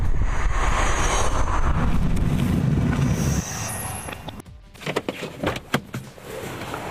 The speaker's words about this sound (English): One thing you'll also pick up on is that there's a high-pitched whine in this car. It's not very obtrusive, but after driving all around, it really starts to get to you.